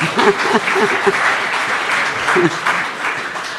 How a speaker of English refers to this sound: So Barry Jones is, of course, an Australian living treasure. He served in the Victorian... Yeah, give him a clap.